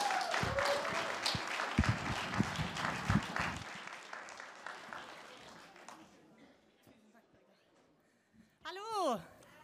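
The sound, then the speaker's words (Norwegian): An audience breaks into loud applause for a woman invited up to speak, dense clapping that swells and then gradually thins and fades out over several seconds, followed by a brief rising and falling electronic whistle at the end. “Vi må gi henne en skikkelig god klapp.”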